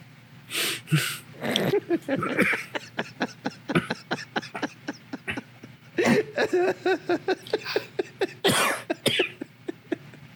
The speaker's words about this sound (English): No, you just made me cough really hard. My diaphragm is spasming so hard right now.